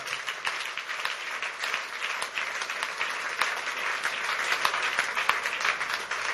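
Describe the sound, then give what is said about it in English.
A church audience at the Keeper's House Chapel International in Madina Estate, Accra, claps for the Lord together in a steady, dense wash of applause that holds at an even loudness for several seconds, with individual sharp claps popping out of the crowd noise. “Give the Lord a big clap.”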